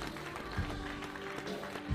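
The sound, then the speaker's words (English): An audience clapping their hands to the Lord, a dense, steady wash of many claps filling the whole two seconds, with a low sustained tone humming underneath and no clear speech. “Would you clap your hands to the Lord tonight?”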